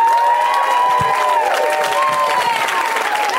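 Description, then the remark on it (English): A crowd bursts into loud, sustained applause mixed with cheers and high-pitched whoops as Kristen Schaal is introduced, a dense steady wash of clapping that holds at full volume throughout. “Let's hear it for Kristen Schaal.”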